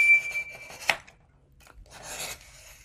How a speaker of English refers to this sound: This is a great way to cut a lot of papers at once, nice and straight, but without a guillotine. Okay, so the first bunch already came off. And this is going to ensure everybody's the same length.